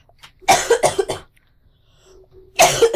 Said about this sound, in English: And this delay tactic of coughing